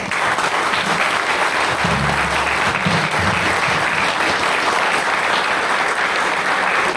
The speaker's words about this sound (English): So therefore, give a good round of warm applause, an introduction, and welcome